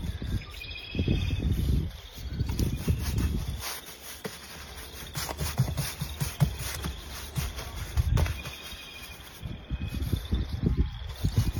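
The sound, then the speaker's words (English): Outdoors on a morning, a steady chorus of frogs croaks with birdsong from pheasants in a field and singing red-winged blackbirds, mostly covered by loud rustling, rubbing and scraping sounds. “We got the frogs in the background, we got the pheasants out in the field, we got the red-winged blackbirds singing.”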